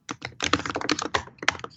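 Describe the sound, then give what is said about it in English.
Rapid, clattering keystrokes on a computer keyboard, loud, arriving in quick irregular bursts with brief pauses, no voices present. “That typing is very loud.”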